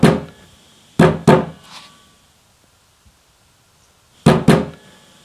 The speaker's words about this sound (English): I think I know that knock. It's the silencers, that's who it is.